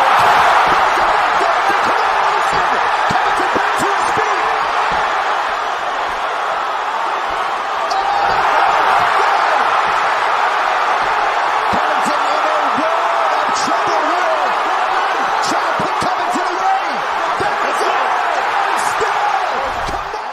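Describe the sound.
Footage of a mixed martial arts title fight between Usman and Covington, with a loud, steady arena crowd roaring throughout, punctuated by sharp thuds of punches landing at irregular intervals as the fighter presses and lands, with indistinct voices mixed into the noise.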